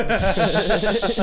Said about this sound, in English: Sorry, I walked back in the room and I heard the cat yell and I thought she was still in the bedroom.